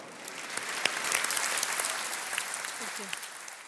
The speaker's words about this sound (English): gets friendly applause from the audience when she's done with her presentation.